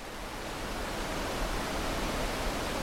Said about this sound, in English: At first glance, it looks like any other waterfall. It's picturesque, surrounded by the lush wilderness of Minnesota's North Shore, and powerful enough to get that real good, relaxing roar of rushing water.